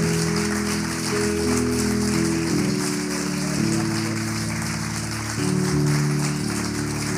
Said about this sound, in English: Can we give these guys just a big round of applause?